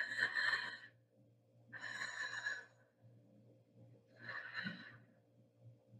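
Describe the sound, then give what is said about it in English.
A voice imitates the heavy breathing of someone asleep in bed: three slow, loud, breathy exhales spaced a couple of seconds apart, raspy, with a low hum underneath. “Because the breathing's like.”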